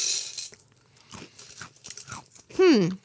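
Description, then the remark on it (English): A mini Teddy Graham cookie crunches in a burst of crisp, crackly bites, then quieter chewing clicks follow before a short rising-and-falling voiced murmur at the end. “Still tastes like Teddy Grahams.”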